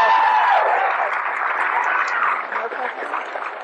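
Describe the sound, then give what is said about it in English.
Steady applause from a sizeable audience fills the whole stretch after a speaker's remarks, a dense wash of clapping mixed with crowd murmur, loud at first and easing slightly toward the end. “The crowd goes wild.”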